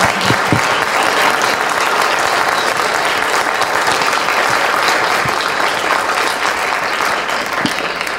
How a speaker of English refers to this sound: So if we could do one more round of applause.